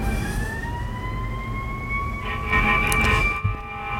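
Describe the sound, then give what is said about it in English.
Wailing emergency sirens from fire trucks and police cars in downtown Fort Wayne, steady rising tones layered over low rumbling traffic, moderately loud. “But ladies and gentlemen, as the fire sirens and the police sirens of downtown Fort Wayne ring into my ear and microphone,”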